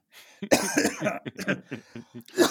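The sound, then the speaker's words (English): A sick person coughs in a loud bout: several harsh, rapid coughs in an uneven burst, with a few brief gasps between them and no talking. “And when you cough, when you're sick on doing a podcast, it just makes me just realize how much you care about us and our listeners.”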